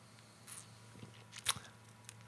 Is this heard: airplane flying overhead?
no